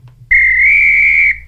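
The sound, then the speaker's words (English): A single loud, sustained blast on a referee-style whistle, lasting about a second, steady and shrill, with no talking over it. “That's the incorrect whistle, Joe.”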